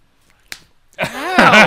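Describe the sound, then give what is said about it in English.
A single sharp slap cracks out as a woman slaps a man in the face, followed a moment later by a loud, drawn-out vocal cry or exclamation that rises and wavers in pitch. “That was a slap.”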